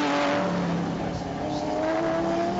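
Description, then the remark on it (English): A pack of 5 or 6 race cars roars past at high speed out of turn 3 of a racing circuit, several engines screaming and overlapping in a continuous loud drone with rising and falling pitch as they accelerate through fast corners. “Busy part of the circuit again, coming out of turn 3 with 5 or 6 cars thundering their way through the really quick stuff.”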